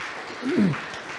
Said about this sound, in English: And I just want to thank all of the people who have stepped up in so many ways. Let's give Amy a round of applause.